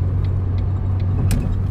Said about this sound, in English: Sorry, I need to merge here, and there's a lot of cars. Oh, gosh.